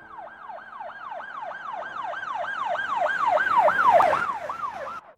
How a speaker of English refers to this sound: He could hear the sirens wailing.